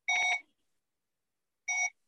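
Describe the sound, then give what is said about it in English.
Short, bright electronic beeps from a talking non-contact infrared thermometer held about an inch from a forehead to take body temperature: a quick pulsing burst followed after a pause by one more beep, steady and high-pitched with no talking. “Three beeps.”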